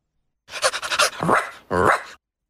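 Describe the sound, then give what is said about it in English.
A person imitates a dog: a quick run of breathy, panting huffs followed by two drawn-out, voiced woof-like barks, loud and alone with no other talking. “Bark. Woof. That's awful. Do it properly. Woof. Woof. That's good. Fetch.”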